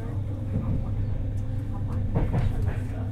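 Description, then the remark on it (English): A steady low rumble of train wheels rolling along rail tracks, with faint intermittent clicks and rattles riding over the continuous drone. “The regular rhythms with which their wheels attaching and moving on the tracks can be very mesmerizing and fascinating, even addictive.”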